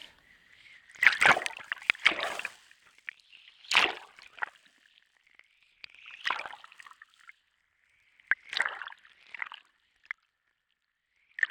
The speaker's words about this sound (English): Until I dive in. It's not silent, but the sounds are softer, clearer. Splash, splash.